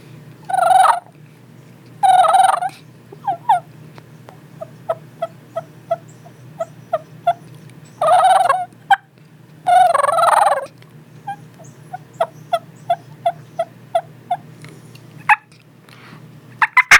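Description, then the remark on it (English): A diaphragm mouth call imitates turkey hen sounds: bursts of rolling, raspy purrs alternating with rapid series of sharp, evenly spaced clucks, fairly loud, with no talking. “Clucking and purring and soft yelping, and then you imagine what that sounds like in the woods.”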